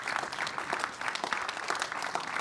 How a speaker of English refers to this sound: Can we just give the Lord a hand clap? Thank him for that.